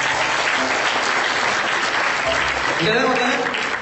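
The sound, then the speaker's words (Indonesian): An audience claps steadily, a dense, continuous wash of applause, with a bit of voice rising near the end. “Tepuk tangan dulu dong.”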